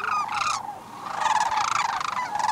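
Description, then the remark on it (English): Sandhill cranes, held up by storms on their southeast migration at the far east end of the Copper River Delta, calling: overlapping rolling, trumpeting cries from several birds, fairly loud and nearly continuous, with a brief lull before a chorus of calls swells again. “Once, the storms were so unrelenting that not only were fishermen unable to return to Cordova, but sandhill cranes were unable to proceed with their southeast migration.”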